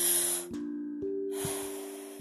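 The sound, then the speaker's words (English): A breathy, airy rush of air as a person takes a deep inhale, then a brief pause, then a longer, slower outward breath, with a soft steady tone humming underneath. “Okay, so first off, I want you to close your eyes just for a moment and take a really deep breath.”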